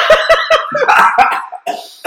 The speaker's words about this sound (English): Coughing. COVID. You had COVID.